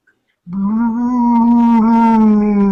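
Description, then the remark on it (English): A person imitates a whining animal with one loud, sustained, nasal whine that starts after a brief silence and holds a steady pitch for over two seconds. “Is that an I want to come with you whine?”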